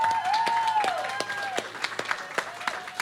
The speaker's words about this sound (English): NT Honey, ladies and gentlemen, round of applause, please.